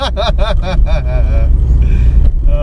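A steady, loud low rumble of a car engine fills the cabin throughout, with a voice-like sound rising over it in the first second before the drone carries on alone.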